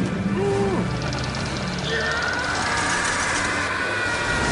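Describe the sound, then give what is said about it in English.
A car engine, said to run on human blood, runs with a loud, steady rumble for several seconds, a dense continuous drone with faint higher whining tones layered over it. “Have you seen the engine?”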